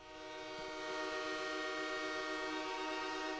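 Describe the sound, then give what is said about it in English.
A loud, sustained train horn sound effect blares with steady harmonic tones, swelling in quickly and holding for several seconds over the low rumble of a rolling train, played as a bit on radio station WGR. “Everyone here at WGR is on the wide receiver train, and we have something for that.”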